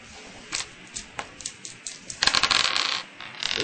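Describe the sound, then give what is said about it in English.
Dice clatter and tumble across a hard surface as Spot Hidden skill rolls are made: a series of sharp, bright clicks early on, then a denser burst of rattling as several dice roll together before settling. No one speaks. “Make spot hidden rolls.”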